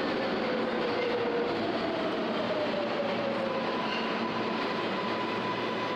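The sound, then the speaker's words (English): Steady, loud rumble inside a packed New York City subway train moving during rush hour on a hot, rainy day, with continuous wheel and track noise and thin whining tones from the motors or wheels drifting in pitch. No voices can be picked out. “You're in a packed New York City train during rush hour, in the heat, and it's raining.”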